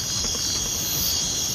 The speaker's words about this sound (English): Oh, I got to give you the crickets for that one.